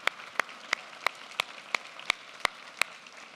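Applause at a church service at Center Point in Prattville, in the form of about ten sharp, evenly spaced claps at a steady, moderate pace, fairly faint and with no talking over them.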